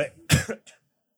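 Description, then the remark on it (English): A person coughs several times in quick succession, one loud harsh cough in the middle flanked by weaker ones, ending with a short faint hack. Fairly loud, no talking. “sorry, I was going to say something, but then I just coughed a lot.”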